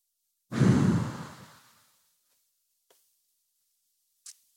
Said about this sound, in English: And then a cannonball breath. Get it out. Take another deep breath in, breathing into that feeling.